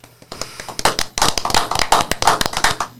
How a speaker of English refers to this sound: Joining us for our first episode are a few members of the golf team. Let's give them a round of applause for the exciting news received this week.